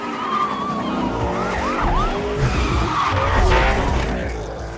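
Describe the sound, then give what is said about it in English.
A video game racing car engine roars steadily while tires squeal and skid in wavering screeches, loud and continuous for the whole stretch, with no one talking. “like the sound of a car in Need for Speed?”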